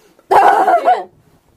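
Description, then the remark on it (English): A dog lets out a single loud, drawn-out bark that slides into a whining whimper, with silence on either side and no talking. “My dog is having a heart attack, I swear.”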